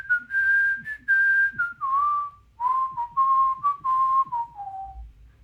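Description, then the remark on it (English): A person whistles a short melody from one of their own songs, clear, with sustained pure tones stepping down in pitch across phrases, a brief pause midway, then gliding lower at the end. “Can you whistle one of your songs?”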